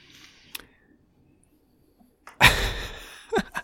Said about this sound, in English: So, yeah, they just knocked over an old iMac computer that we don't use anymore.